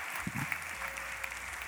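An audience applauds steadily at a church service, a dense wash of many hands clapping together that holds at an even level throughout.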